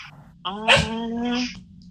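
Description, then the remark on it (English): A dog at home lets out one drawn-out, bark-like yowl that starts sharply and holds a steady, tonal pitch for about a second, moderately loud. “So, and now the dog is barking.”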